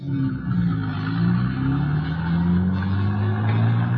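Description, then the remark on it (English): A car engine rises steadily in pitch as it accelerates from a standstill at a stoplight in traffic heading for downtown Los Angeles, a loud rumble with harmonics climbing over several seconds and a faint clatter underneath, no voices. “We pulled up to a stoplight. Still got him? Yeah, he's still up ahead, in front of that blue Mercury.”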